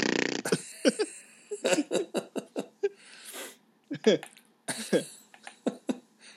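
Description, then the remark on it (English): Someone blows a rapid series of wet, sputtering fart noises with their mouth, a dozen or so short bursts with brief gaps between them. “I was looking, but it looks like all of my fart apps are not compatible with my current version of my phone. Oh, that's, I can do it.”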